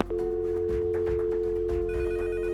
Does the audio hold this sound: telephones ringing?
yes